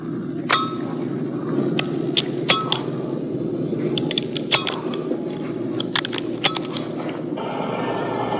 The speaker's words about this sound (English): If you listen closely, you will hear the actual sound of his parachute gear clicking closed.